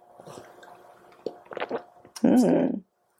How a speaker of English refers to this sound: Take at least one sip? It's really hot just so we can know what it tastes like at least.